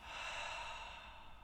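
A deep, breathy exhale through the mouth after a held breath: one steady rush of air lasting over a second, fairly soft, with no talking.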